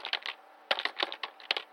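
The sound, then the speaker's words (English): Quick, uneven key presses: a dozen or so sharp plastic clicks in irregular bursts, with a short pause midway, as someone taps random number keys trying to guess a passcode, with no voices. “Let me try hitting random numbers.”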